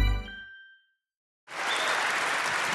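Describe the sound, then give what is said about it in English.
A crowd breaks into steady, dense applause for comedian Jason Manford after a brief chime-like tone fades into a moment of silence; the clapping holds at an even, fairly loud level. “And keep that applause going for my next guest, who is probably best known as Jammy from the Xbox 360 game Fable 3.”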